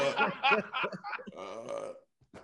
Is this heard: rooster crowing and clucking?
no